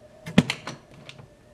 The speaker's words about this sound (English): That's it. Close the door after you.